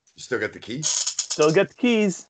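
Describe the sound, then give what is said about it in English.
Handcuffs and their keys rattle in a bright metallic jangle for a couple of seconds, moderately loud, mixed with voices talking over it. “Still got the keys.”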